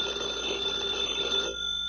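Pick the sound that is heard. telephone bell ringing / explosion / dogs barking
telephone bell ringing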